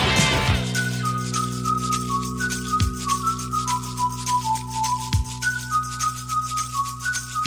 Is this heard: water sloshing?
no